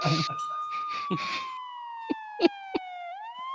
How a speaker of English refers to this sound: The police sirens get louder as they were dialed from the landline.